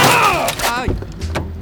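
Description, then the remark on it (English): A car strikes a cyclist in a bike lane in Paris: a strained, falling vocal cry gives way to a heavy thud, then a second sharp knock and clatter, all fairly loud. “Vous venez de me percuter dude, avec I votre think voiture!”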